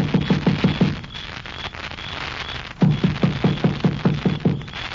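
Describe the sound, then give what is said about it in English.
Knocking on a door: a quick run of about five hollow, low-pitched raps, a pause, then a second, longer run of firm knocks over a steady background hiss. “You gonna knock? Of course.”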